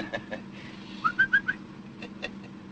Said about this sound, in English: Say, that's a pretty bird. Yeah, surprise for my wife. And the five dimes says he's a guaranteed warbler. Your money back.